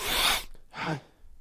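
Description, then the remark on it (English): An aborted sneeze: a long, breathy hissing intake followed after a short pause by a brief, half-voiced puff that cuts off instead of building into a full sneeze. No talking. “I kind of had to sneeze for a second, but it broke off.”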